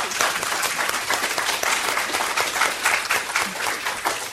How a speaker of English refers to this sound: If I could have a small round of applause again, if you want to.